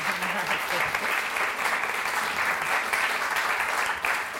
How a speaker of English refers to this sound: Okay, well, I'm not going to stop people applauding. Please do. No, please do.